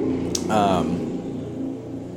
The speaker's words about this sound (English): What was that sound? Oh, was it? My windows are open and a motorcycle just went by.